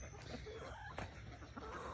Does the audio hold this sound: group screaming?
no